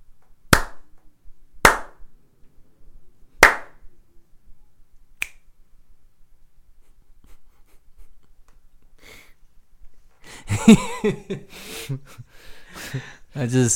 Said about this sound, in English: He literally thought about every single snap and slap he gave